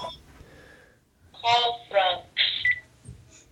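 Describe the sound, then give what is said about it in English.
A Skype call alert plays: three short, bright electronic tone bursts in quick succession, fairly loud, over a faint background hum, then it stops. “Can we just do a Skype call?”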